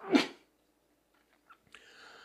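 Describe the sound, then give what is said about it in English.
A single sharp, loud sneeze from a person on air bursts out right at the start, followed by near silence, a few faint clicks, and a soft sustained tonal sound toward the end. “I think that's my second sneeze on air in this year.”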